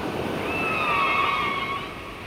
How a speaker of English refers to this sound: I think I even have some, there is a bit of whale in the intro as well, quite quietly. Let's see if I can find them.